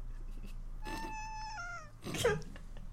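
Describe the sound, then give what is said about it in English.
A cat lets out one long, drawn-out meow that slides down in pitch, followed by a brief rough burst of noise over a low steady background hum. “Alright, I think we're done terrorizing the cat.”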